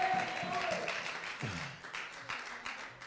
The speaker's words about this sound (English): If you believe that, give him a hand clap of praise.